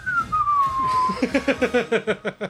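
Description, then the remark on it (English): Someone whistles a single descending note that slides down, then breaks into a quick run of short, evenly spaced melodic notes, fairly loud with no talking. “Since I'm the last one there, last one in line, I turn and start whistling like.”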